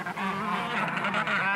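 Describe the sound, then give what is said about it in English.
A crowd of black and white penguins waddling around a busy beach squawks, harsh braying calls overlapping continuously and fairly loud, with no gaps and no voices. “That squawking is coming from some black and white birds waddling around the beach.”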